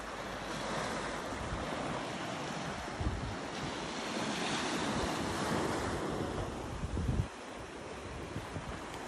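Ocean waves wash onto a beach and retreat from the shore in a steady, broad rush, with gusts of wind buffeting the microphone. No voices are present.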